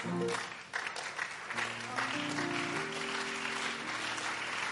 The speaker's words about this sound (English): Are you clapping for the cross? Are you clapping for the blood?